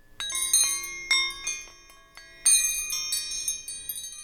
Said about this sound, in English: Let's chime the wrenches.